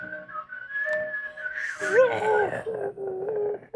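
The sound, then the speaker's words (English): Throat whistling by a man: a steady, high held tone that drops midway into a lower, wavering, warbly pitch with a breathy edge, fairly loud with no talking. “I'm a throat whistler.”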